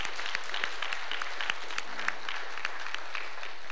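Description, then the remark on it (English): An audience breaks into sustained applause as a hand clap of praise to the Lord, a dense wash of many hands clapping at a steady, even level with crisp individual claps popping out, and no voices heard above it. “Wednesday night, we had two young ladies pass from death into life and receive Jesus Christ as Savior in our youth service downstairs, and I believe that deserves a hand clap of praise to the Lord.”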